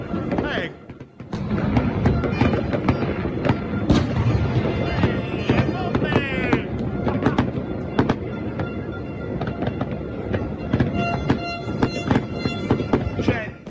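Fireworks in Naples crackle and bang continuously in the distance during a city-wide celebration, a dense barrage of sharp pops and booms layered over a noisy outdoor crowd, with bursts intensifying toward the end.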